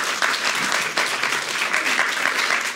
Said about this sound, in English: Amen. Give the Lord a big clap this morning, can you?